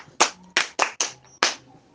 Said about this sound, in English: Did you get that? Yes. Clap for yourself.